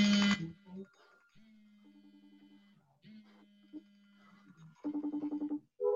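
An electronic phone-call ringing tone plays: steady sustained tones broken by bursts of rapid, warbling pulses, moderately quiet, with brief clattery noises at the start and end.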